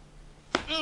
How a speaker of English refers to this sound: That's a fetish. Getting punched in the face. You're listening to an Asian nurse punching a guy in the face.